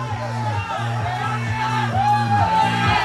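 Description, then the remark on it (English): A loud crowd of 36 people surrounding a game of Techno Ball shouts and whoops continuously for the whole stretch, voices overlapping into a dense roar, with a steady low droning tone running underneath. “there's a crowd of 36 people surrounding the game.”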